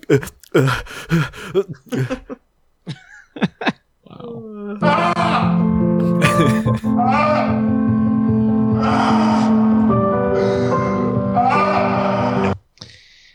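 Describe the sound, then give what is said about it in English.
Ragged, breathy gasps for air come in quick bursts, then give way to a long, loud, strained groaning wail that holds for several seconds before cutting off abruptly. “I really love that sound when they're just gasping for air when you let go.”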